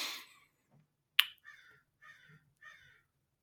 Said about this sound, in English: There's like a crow party outside my window.